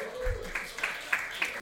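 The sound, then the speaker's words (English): A comedy show audience applauding a comic after his set, a steady wash of clapping with a few sharper claps standing out, moderate in volume, fading out abruptly. “man, clap it up for my boy, Damani Seal.”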